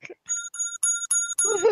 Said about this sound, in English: And a correct bell